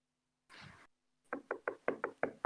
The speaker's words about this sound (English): is that a knock at your door?